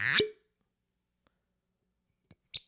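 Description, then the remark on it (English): A real cork is pulled from a bottle of apple-scented whiskey with a single loud, hollow pop, followed by near silence and then a couple of faint clinks and light taps. “Has a real cork, which I always appreciate.”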